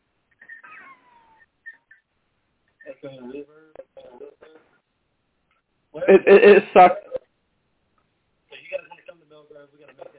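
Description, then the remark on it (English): Thin, phone-line voice audio comes through in choppy bursts separated by silence, with one loud, buzzy surge in the middle and a hollow, echoing quality on the call line, during a StreamYard stream call. “is saying there's an echo.”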